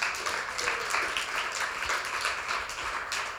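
A crowd gives the emcee a round of applause, a dense wash of many hands clapping at an even, fairly loud level throughout with no voices standing out.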